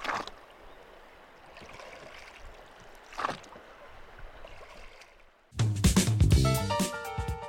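Water on the Yampa River rushes and gurgles steadily past a raft, with a couple of brief splashes, before music abruptly cuts in loudly for the final two seconds.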